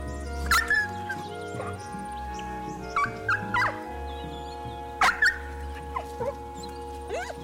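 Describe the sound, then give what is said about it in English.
A dog named Jack, made to cry for a radio feature recording, whimpers and cries in a string of short, high-pitched whines, about eight of them, coming in uneven bursts over a steady low hum. “While no animals were physically harmed in the recording of this radio feature, it is possible that Jack suffered some psychological trauma as a result of being made to cry.”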